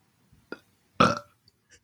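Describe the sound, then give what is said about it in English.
A loud burp erupts after a short throaty lead-in, a rough, rumbling belch lasting about a quarter second, followed by quiet breathy sounds. “Yeah, I'll throw in the burp.”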